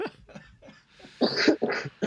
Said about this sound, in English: All right, you two sickies. So, we're going to... Yeah, sorry about all the coughing. Oh, I really it's fine. I hope you can edit it out or something.